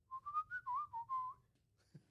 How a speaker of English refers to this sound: It's every day I whistle something called the lick, maybe 2 or 3 dozen times. It's my favorite lick. Can we get an example? A good whistle? Yeah, can we hear it?